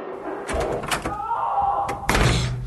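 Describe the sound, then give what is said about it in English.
A door buzzer drones for about a second amid a few mechanical clunks, then the door clatters open loudly, with no voices. “Buzz me in! I'll explain everything!”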